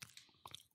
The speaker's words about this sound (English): I love that I can hear you chew.